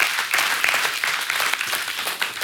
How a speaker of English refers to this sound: Yeah, you can clap. That's good.